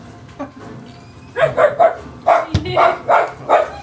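Dogs bark in a quick run of about eight sharp, loud yaps, coming in uneven bursts after a quiet start, with no talking over them.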